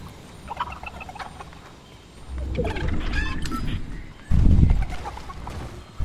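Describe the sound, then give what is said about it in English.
A chicken clucks in short, scattered bursts over a low background rumble, with a louder thump or rustle near the end. “Buddy, where's the chicken? I want to see the chicken.”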